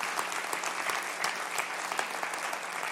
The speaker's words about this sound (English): Come on, give her a round of applause this morning.